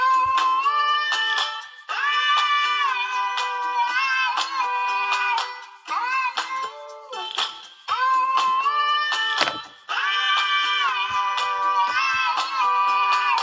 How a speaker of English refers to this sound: But, yeah, this is actually my pet cat.